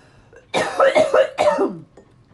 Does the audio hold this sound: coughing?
yes